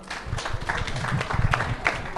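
An audience applauds steadily for Dr. Richard Kay, a dense wash of many hands clapping at once with no gaps, holding an even, moderately loud level throughout.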